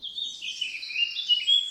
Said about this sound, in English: A train whistle has a high pitch. So does a singing bird.